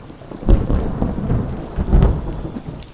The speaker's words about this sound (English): Tan Sen, you must be the world's greatest singer. When you sing about rain, it rains.